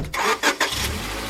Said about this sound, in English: They pack into Kevin's Volkswagen Rabbit and head off to promote the band.